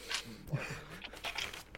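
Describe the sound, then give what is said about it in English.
Packaging for a new Lego base plate being opened: soft crinkling and tearing rustles in short irregular bursts, fairly quiet, with a brief murmur of a voice partway through. “I like opening these.”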